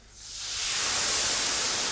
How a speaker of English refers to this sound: And the steam intensifies in the area. You feel a blast of warmth. It's not painful, but you definitely feel an increase in temperature. So this is steam, not smoke.